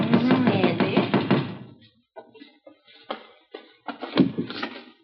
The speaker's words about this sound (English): How many times do I have to knock?